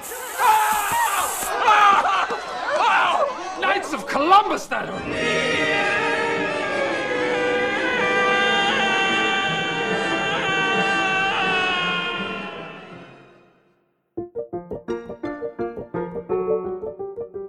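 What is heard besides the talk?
two movie screams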